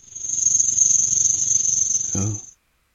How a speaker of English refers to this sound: Snake. Here's a snake sound.